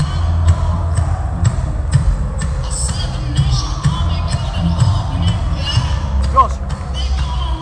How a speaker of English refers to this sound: This is going to be a big one. Crowd are loving it. Just listen to the crowd. Everyone in this arena is here for Jack Shaw.